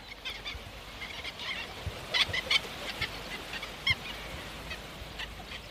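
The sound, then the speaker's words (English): A flock of godwits flies overhead above a firth near high tide, with many short, overlapping nasal calls scattered throughout and several louder bursts standing out over a steady rushing of wingbeats. No one speaks. “These are godwits flying overhead. You can hear them calling.”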